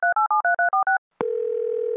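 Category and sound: signal or alarm, telephone dial tone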